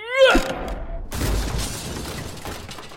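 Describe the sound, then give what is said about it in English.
A brief electronic chime gives way to a loud crash of breaking glass and heavy impact as a gambling machine pushed onto High Holborn road lands on its painted glass face and a swiftly moving bus runs over it, with the shattering debris rattling on for a couple of seconds. “No sooner had it landed on its painted glass face with a smash than a swiftly moving bus happened by, making short work of the stupid plastic glass box.”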